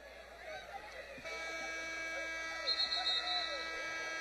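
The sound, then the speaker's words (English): A basketball game clock buzzer, set off early by a clock malfunction with two-tenths of a second left, cuts in abruptly about a second in and holds a steady, droning electronic tone to the end, over a murmuring arena crowd. “And a quick trigger on the buzzer, and we'll reset it again.”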